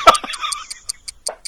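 A clock, called the doom clock, ticks in a steady, quick rhythm of crisp, bright clicks, about five per second, while a short burst of laughter and a murmured voice sound underneath at the start.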